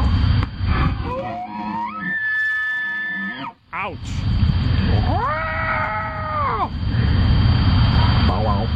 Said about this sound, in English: Now, this is an elk in rut. This is what an elk sounds like.